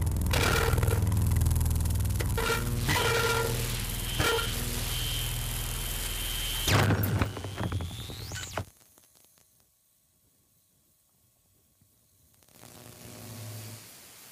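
The end of a music track whose dense, fuzzy sound is laced with crackling clicks and pops. It cuts off abruptly to near silence with faint scattered crackles, then a low hum rises at the end.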